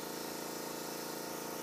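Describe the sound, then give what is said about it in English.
An air hammer with a chisel chatters away in a continuous, rapid, buzzing rattle, steady and loud for the whole moment with no pauses and no voices. “All right, guys, we got our air hammer.”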